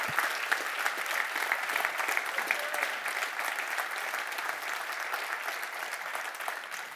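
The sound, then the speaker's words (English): An audience applauds steadily for several seconds, a dense wash of many hands clapping at an even, sustained loudness, with no voices standing out. “Yeah, you can clap for that. You can clap for that.”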